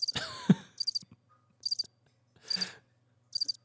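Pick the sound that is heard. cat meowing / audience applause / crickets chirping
crickets chirping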